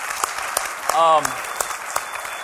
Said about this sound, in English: I'm thankful for those guys and girls who lead us there. Yeah, you can clap for them. It's okay.